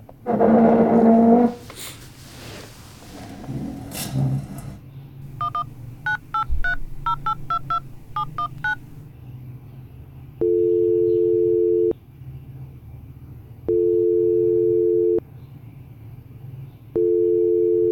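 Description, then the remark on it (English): A quick run of about a dozen telephone keypad beeps as a number is dialed to make a phone call, then a steady ringback tone sounding three times with pauses between, clear, after some brief handling noise at the start. “Okay, honey, here's the number. Let's make a phone call.”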